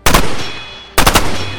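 Two loud carbine shots about a second apart, fired by J.R. Russo from a van at Barboza, the first missing and ripping through a car, the second striking him in the chest; each a sharp blast with a brief crackling rattle, followed by a slowly fading rumble before the next shot.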